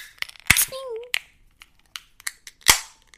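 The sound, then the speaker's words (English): Two cans of Head High IPA (6.6% alcohol) crack open with sharp, loud pops, each followed by a brief fizzing hiss, amid small clicks and metallic taps. A short voiced sound is heard after the first pop. “All right, let's crack these bad boys.”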